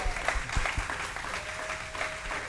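An audience applauds, a dense, steady patter of many hands clapping at an even loudness for a couple of seconds, with faint crowd murmur mixed in.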